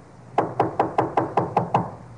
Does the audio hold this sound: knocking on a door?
yes